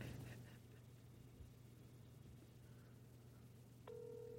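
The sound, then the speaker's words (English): An outgoing phone call to Andy Kindler: its ringback tone sounds near the end, a steady electronic purr over a constant low hum, with no one talking. “While we're waiting for Andy to answer, you can follow me on Venmo.”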